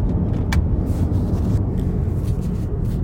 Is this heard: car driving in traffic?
yes